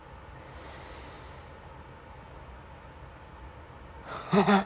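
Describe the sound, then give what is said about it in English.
A person hisses like a giant snake: one sustained, loud, breathy hiss lasting over a second, followed by quiet and a brief voiced vocal sound at the very end. “Giant snake.”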